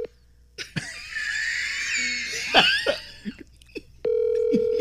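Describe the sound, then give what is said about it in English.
A phone call being placed to a person's number: a few short clicks and coughs over a noisy background, then a steady, loud ringback tone comes through near the end with no talking. “I bet he got rid of the phone number that I call too.”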